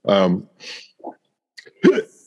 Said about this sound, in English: Sorry, I got the hiccups. God damn it.